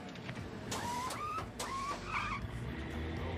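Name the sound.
car driving by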